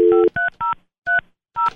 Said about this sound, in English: I'm not real good at this whole dialing the phone thing. It's a new thing for me.